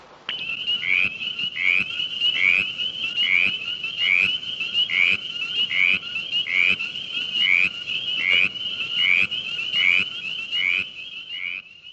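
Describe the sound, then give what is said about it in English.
A mountain chorus frog calls in a steady chorus of short, rising trills repeated about every half second, loud, layered over a dense background of other frogs. “Mountain Chorus Frog.”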